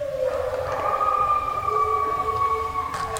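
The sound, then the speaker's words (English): Several wild wolves on a hillside at night howl together in response to a guide's imitated wolf howl, in long, overlapping sustained tones that hold steady and slowly waver, a chorus carried over a faint steady background hiss. “The call and response howl gets the real wolves to join in.”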